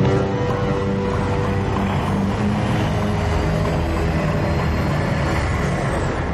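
A Predator drone flies steadily overhead on its way to Beverly Hills, its low engine hum loud and unbroken, with a dense rumbling roar that holds at a constant level throughout and no voices.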